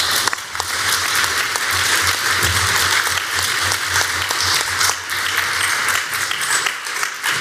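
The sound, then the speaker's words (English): A debate audience applauds the debate teams steadily for several seconds, dense overlapping claps forming a loud, even wash of sound with no voices on top. “And I know we just had a round of applause, but let's give just one more round of applause to our fine debate teams.”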